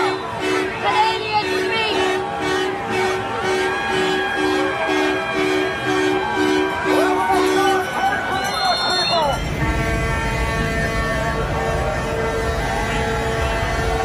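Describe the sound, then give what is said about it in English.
A large outdoor crowd in Ottawa, Canada's capital, sings the Canadian national anthem together, with rhythmic honking horns and traffic noise mixing in. Partway through, the scene shifts to a steady, louder rumble of crowd and wind. “The known terrorist anthem of O Canada.”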